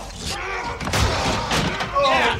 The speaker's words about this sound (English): There's a bunch of skeletons in the studio I just knocked over with your ass!